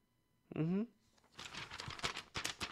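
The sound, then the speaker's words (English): A brief murmured voice, then a string of crisp rustling bursts as printed paper sheets are handled and crinkled, loud and uneven for over a second. “That's the sound of paper.”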